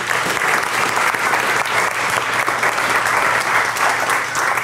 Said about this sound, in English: So without any further ado, please give a big round of applause for tonight's speaker